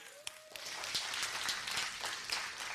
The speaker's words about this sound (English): And also, y'all can cheer for that. That's fine. I heard a little bit of it.